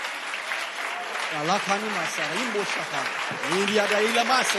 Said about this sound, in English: Clap your hands and enforce this prophecy.